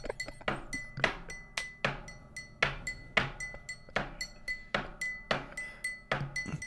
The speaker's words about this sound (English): No, … goes something like...